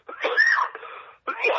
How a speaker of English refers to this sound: Excuse me for this cough